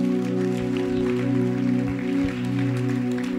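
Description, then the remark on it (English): An audience at a church service at Lighthouse Chapel International, Oyibi Cathedral, claps for Jesus together in a steady, fairly soft wash of hand claps, heard over a loud, sustained keyboard chord that holds throughout. “Your clap is, your hand clap is very weak.”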